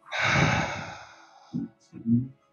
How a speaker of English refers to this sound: So, breathing in, slowly. Good. I breathed in too fast. Sorry. And then breathing out.